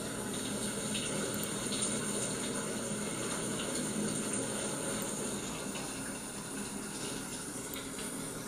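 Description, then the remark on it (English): A royalty-free shower sound effect runs steadily, a dense, even hiss of falling water that stays constant throughout with no pauses, sounding somewhat like heavy rain. No voices are heard. “This is royalty-free shower sound effect. Sounds a little bit more like rain, but I'll give you a few seconds on this.”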